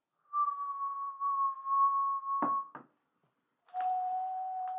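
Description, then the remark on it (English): A wet finger circles the rim of a wine glass, one of three glasses holding differing levels of water, drawing out a steady, pure ringing tone that ends in a couple of brief scraping bumps, then resumes after a pause at a slightly lower pitch. “handed us three glasses with differing levels of water in them, and we're attempting to do the wine glass rim thing.”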